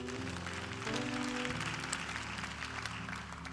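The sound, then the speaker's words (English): An audience at a church worship service claps steadily and loudly for several seconds, the dense crackle of many hands continuing over sustained, low keyboard chords that shift partway through. “Clap your hands and say, that's a pretty good time.”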